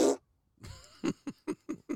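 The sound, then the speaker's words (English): A fart noise: a short, harsh blast, a brief pause, then a low sputtering rumble breaking into five quick, evenly spaced puffs. Fairly loud, with no talking over it. “Is any podcast complete without fart noises?”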